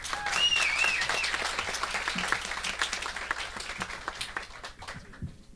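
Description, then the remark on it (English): A crowd applauds with dense, overlapping claps that start loud and gradually thin out over several seconds, with a few faint whistles or cheers mixed in early on. “Let's give Jeremy a round of applause.”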